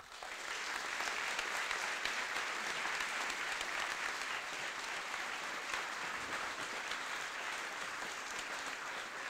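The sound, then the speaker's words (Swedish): An audience at a studentafton (student evening) applauds steadily to welcome Margot Wallström, a dense, even wash of clapping that holds at a consistent loudness for several seconds without any voices standing out. “Och med det så ber jag ge en varm applåd till Margot Wallström.”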